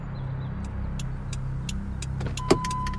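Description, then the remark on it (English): Steady low engine rumble from inside a moving taxi, with faint clicks and ticks over the hum and a brief sharp tone near the end. “I had been put in a taxi, which I'm very grateful for,”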